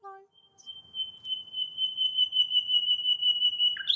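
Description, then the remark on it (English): A nightingale in Berlin sings through the night, holding one long, steady, high whistled note after a brief lower call, then breaking off into a quick sharp flourish, over a faint low background rumble. “Berlin’s singing nightingales”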